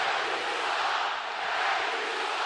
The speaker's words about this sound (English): Curry goes down to the floor. Abrines comes out limping. And the crowd has something at least to boo or cheer.